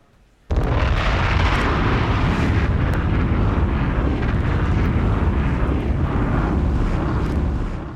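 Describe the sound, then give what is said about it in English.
A loud crack of thunder from a thunderstorm with lightning breaks in suddenly and rolls into a deep, sustained rumble over the steady hiss of pouring rain, easing slightly at the end. No one speaks. “I don't know about y'all, but where I'm at, it's pouring down. So y'all know what it is, man. We're going to get into this show because it's thunder and lightning.”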